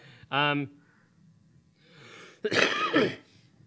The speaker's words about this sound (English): Well, something came out of there. I don't know what that was. Came out of your body? Yeah. When you coughed? I coughed and then something came.